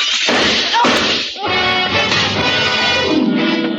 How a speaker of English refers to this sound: The revolver barrel that crashed through the darkened windowpane behind the bar spoke twice. I answered it.